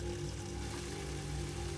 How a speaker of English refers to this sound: And you can hear what sounds like rushing water as...